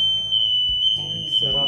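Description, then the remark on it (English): A smoke alarm sounds a loud, piercing high-pitched tone that holds steady throughout, while people talk and move around underneath it. “Let the fire alarm go off, smoke alarm.”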